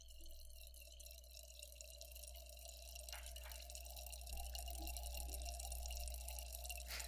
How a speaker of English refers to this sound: You can hear this water. Listen to that. You can hear this water. You really can. It's really going, too. It's still going, too.